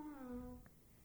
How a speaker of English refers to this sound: It has theremin in it.